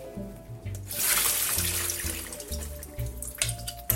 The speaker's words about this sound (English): the beans are soaked, and we're ready to cook. So I am just gonna drain them really quickly.